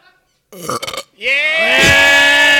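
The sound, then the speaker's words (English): A loud, drawn-out burp rings out after a chugging contest, rising into a long, resonant belch that keeps going to the end, preceded by a few short, croaky bursts. “If you need to burp, if you need to belch, if you need to puke, feel free to do so.”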